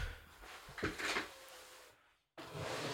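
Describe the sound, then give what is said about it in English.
A bottom drawer scrapes and rattles as it slides open, a short burst of wooden friction that fades into a moment of near silence before room noise returns. “Honestly, I think it might be in the bottom drawer. You want to check?”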